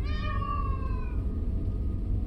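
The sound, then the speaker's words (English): A single high, plaintive yowl like a cat crossed with a crying child holds for about a second, sliding slightly downward before cutting off, over a steady low rumbling background. “A high, warbling sound piercing through our argument. It sounded like a mix between a cat's yowl and a child crying ow.”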